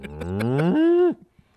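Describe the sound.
A person imitates a cow with a single long, drawn-out moo that rises in pitch and then drops off abruptly, loud, with no talking alongside it.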